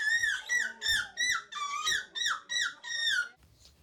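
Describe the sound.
A voice imitates a seagull in a seagull imitation contest, with a rapid run of about eight loud, shrill squawks, each one bending downward in pitch, before trailing off into a brief quiet end.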